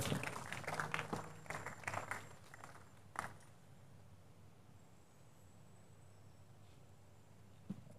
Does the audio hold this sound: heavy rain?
no